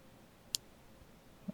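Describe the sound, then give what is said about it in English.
A single crisp mouse click sounds once, short and sharp, as dice are rolled in a digital game, followed by a faint low bump near the end. “So I click the dice, but there it goes.”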